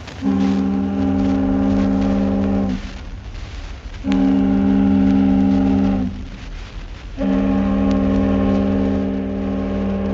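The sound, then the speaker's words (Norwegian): The siren of the ship Kristianiafjord sounds its farewell salute as it departs: three long, deep bass blasts, each a steady, loud, droning tone separated by short pauses filled with rumbling background noise; the last blast runs to the end. “Så kommer båtens avskjedshilsen med veldig bassrøst I tre støt.”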